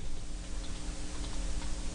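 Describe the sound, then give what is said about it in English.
Keyboard typing as someone types the word 'rizz' into a Google search: soft, irregular clicks and taps spread across two seconds over a steady low hum, with no one speaking. “I'm just typing now for those of you that aren't mentally watching on the video stream.”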